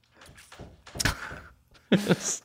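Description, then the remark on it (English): A dog trying to get in knocks on a door: a few dull, heavy thuds in uneven bursts, moderately loud, with short pauses between the hits and no talking. “Do you probably hear that knocking on my door? Yeah. My dog's desperately trying to get in.”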